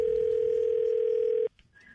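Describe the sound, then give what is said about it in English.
A steady, loud telephone dial tone holds for about a second and a half as a call is placed, then cuts off abruptly, leaving faint line noise and a brief higher beep. “A phone tap about holiday political correctness.”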